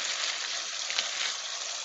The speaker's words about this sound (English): So, after that, I just turn on water.